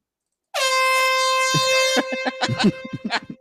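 A loud air horn blares in one sustained, brassy blast lasting about a second and a half, then cuts off into a flurry of short, choppy bursts of noise.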